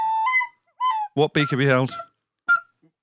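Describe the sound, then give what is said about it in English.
A recorder blown badly: a few shrill, wavering toots, then a lower, honking squawk that bends in pitch, and a final short squeak, played alone with gaps between. “I can't play it. It's a recorder.”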